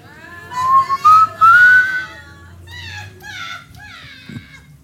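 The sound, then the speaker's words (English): A person whistles a short, clear rising tune, followed by softer, high-pitched warbling vocal sounds over faint background noise. “The whistling one.”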